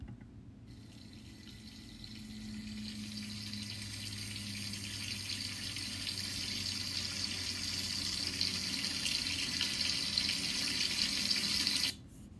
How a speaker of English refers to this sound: Number two is water from the faucet in your kitchen or washroom.